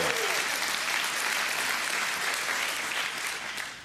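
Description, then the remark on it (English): A church crowd claps steadily at the announcement of moving into its new facility at Malbus in January, a dense wash of many hands applauding at a constant, fairly loud level throughout, easing off slightly at the very end. “That's where you clap.”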